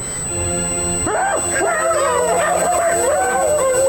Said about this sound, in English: Wolves!